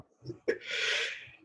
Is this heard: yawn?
yes